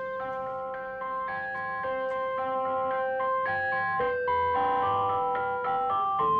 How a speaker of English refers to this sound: Speaking of benign things that are played surprisingly creepily, my God. Though. Xander's driving some sort of ice cream truck that's playing its tune in a minor key?